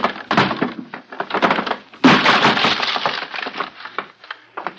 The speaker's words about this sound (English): Stand back! I'm going to break it open!